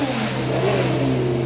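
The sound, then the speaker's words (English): Penske racing cars rev loudly and steadily as they go out onto the track, a dense mechanical roar with strong low harmonics sustained throughout with no talking. “Well, one of the great features of this weekend is the commemoration of Roger Penske's career, and the Penske cars are just going out on the track now.”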